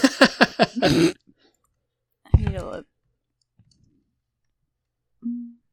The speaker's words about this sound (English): Go ahead and actually roll charisma checks. That's impressively cocked. I rolled it on top of another dice.